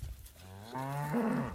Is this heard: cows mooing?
yes